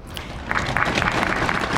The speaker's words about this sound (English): Crowd of 85 claps in unison.